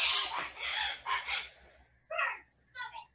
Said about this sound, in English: We heard the birds going, ah!